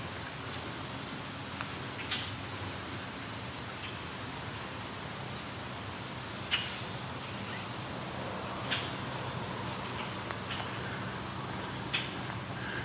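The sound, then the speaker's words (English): Common grackle check-check calls: short, sharp, high notes repeated irregularly about eight times, fairly faint over a steady background hiss, with no talking. “These check-check calls. Common grackle.”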